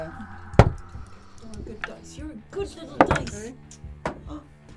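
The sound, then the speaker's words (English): Dice clatter onto a table in a few sharp, uneven bursts, each a hard knock followed by a brief rattle, with low voices murmuring underneath, as players roll for a wisdom saving throw. “You're a good little dice.”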